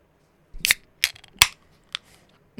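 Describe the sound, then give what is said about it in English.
Miller beer cans being cracked open: a series of sharp, bright metallic clicks and pops, three close together, then a softer fourth, each with a brief crisp fizz, with no voices. “Those Millers crack so good.”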